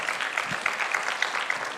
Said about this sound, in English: How many volunteers do we have out there? How many do you have? Come on, let's give them a hand clap and tell them we're volunteering. Praise God.